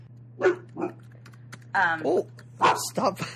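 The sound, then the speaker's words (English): A person mimics a dog with a string of short, voiced barks and yips in quick bursts, over a steady low electrical hum, with some soft clicking in the gaps. “Stop it with your dog impressions.”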